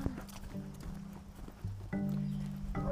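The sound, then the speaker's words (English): Quick, steady footfalls of someone jogging past outdoors, a rhythmic patter of light thuds running through the whole clip over low, sustained droning tones. “I hear the pitter-patter of feet behind me. Someone's jogging.”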